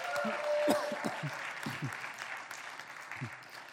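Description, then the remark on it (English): A church audience applauds 24 new members joining the church, a steady, dense wash of clapping with a few scattered voices and cheers mixed in. “We've got 24 people this weekend who are joining our church and becoming part of the family. Give them a hand, absolutely.”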